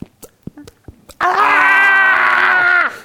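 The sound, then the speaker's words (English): A voice imitates the panicked, wordless scream of two small boys trying to shout "fire": one loud, sustained, high-pitched wail of nearly two seconds, preceded by a few soft knocks and breaths, then cutting off abruptly. “And we hadn't been sat down for more than 10 minutes when two small boys arrive at the door, and they claim they shouted fire, fire, but actually it came out as...”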